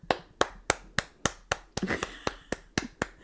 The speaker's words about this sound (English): Slow clap. Well, I did tell you, Dumbledore clap. Dumbledore clap.